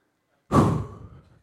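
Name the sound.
door being shut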